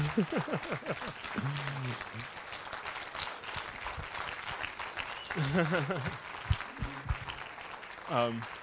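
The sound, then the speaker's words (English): An audience applauds steadily through the whole stretch as a pastor is called up for Clergy Appreciation Month, a dense wash of clapping, while voices speak over it at the start, middle and end. “You can clap.”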